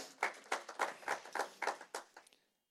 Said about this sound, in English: You can give yourselves a round of applause because you're a great church.